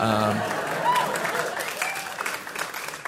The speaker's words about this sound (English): I think I was 20 maybe when I wrote for All That on Nickelodeon. I'll hold for applause.